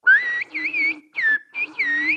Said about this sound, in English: If I wanted to ask for 1 kilogram of tomatoes in Turkish, I'd say... Bir kilo domates lütfen. Which in whistled Turkish would be...